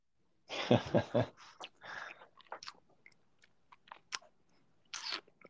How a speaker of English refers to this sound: So kudos, cheers. And I'm going to sip this and shut my fucking mouth.